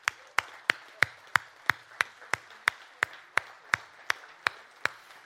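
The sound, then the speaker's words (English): A church audience gives a clap offering to honor the women and mothers of the church, clapping in a steady unison beat, about sixteen sharp, evenly spaced claps roughly three per second, with no talking over them. “Can we give them a clap offering?”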